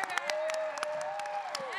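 An audience applauds with scattered, uneven claps, while a long, drawn-out cheer holds a steady pitch across most of the brief moment, rising slightly before it fades.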